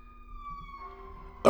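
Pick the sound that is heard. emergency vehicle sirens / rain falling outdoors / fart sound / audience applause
emergency vehicle sirens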